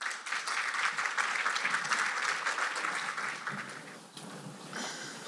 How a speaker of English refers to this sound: And I'd like everyone to give them a round of applause.